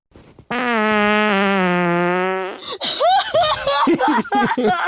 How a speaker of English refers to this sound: And the game is to guess whose fart it is.